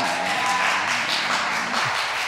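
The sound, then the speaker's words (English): A crowd claps for a picture of the RC students crew shown on the screen, in a dense, steady wash of applause, many hands overlapping into a loud continuous patter with no voices standing out. “The loudest claps were from them themselves, the clapping, which is, I'm cool with that.”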